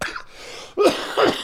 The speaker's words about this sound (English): Oh, I'm dying. Stay with us, spicy cough. Stay with us. Oh, I'm trying.